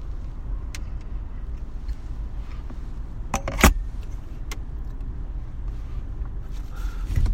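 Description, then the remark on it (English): A car engine revs with a deep, steady low rumble throughout, broken by one sharp click or knock partway through; the driver revs it after another driver cuts around him. No one speaks. “If you heard me revving my engines because some person decided to cut around me.”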